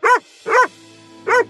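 A dog barks three times, loud, with a short gap between the first two barks and a longer pause before the third. No other sounds accompany them.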